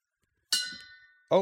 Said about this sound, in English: Oh, making noises. That is the gong stuff. Of justice.